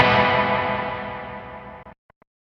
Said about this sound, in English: I don't think this is a very surfy reverb. It has something close to a drip, but it's not a drip. It's like a slapback echo.